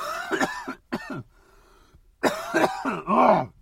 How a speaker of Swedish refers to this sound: Nu måste jag hosta lite eftersom jag är lite förkyld.